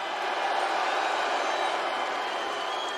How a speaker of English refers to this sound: You're seriously booing Stu Hart? They're saying Stu.